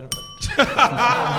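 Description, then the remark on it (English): A single bright bell ding rings out with a short ringing tail at a live event before an audience, then a burst of people chuckling and laughing takes over. “All right, so ladies and gentlemen, we only have a couple of bells up here, so in the audience, if ding. You feel the need, you can yell it out.”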